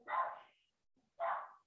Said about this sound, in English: My dad just got home, so Moja's gonna bark for a bit.